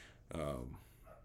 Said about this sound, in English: Can you hear my dog? I'm at home today. It's Labor Day.